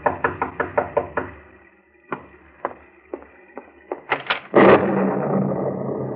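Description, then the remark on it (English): Firm knocking on a door on a dark, stormy night: a quick run of about six raps, then a few slower, spaced knocks, ending in a longer rushing, scraping noise. “And as you sit by your fireside, you're startled by a knock on the door.”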